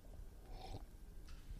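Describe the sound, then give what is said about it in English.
A quiet sip from a drink: one soft, airy slurp, then a fainter second breathy sound a moment later, with no talking. “I love the sound of your sipping drink on the audio.”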